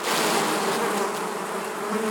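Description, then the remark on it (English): A dense swarm of bees buzzes steadily and loudly, a continuous droning hum with shifting tones that fills the whole moment without pause, and no voices are heard. “I hear a buzz, excitement. I look toward the trees. 1,000 bees come after me.”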